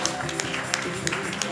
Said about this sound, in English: If you believe he has chosen and called you by his name, give him a clap and a shout to the heavens, to the God of all flesh.